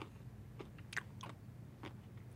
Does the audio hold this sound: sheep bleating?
no